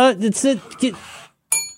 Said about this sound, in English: My bell. Now that I'm trying to keep my office nice, I put things away and my bell's out of reach sometimes.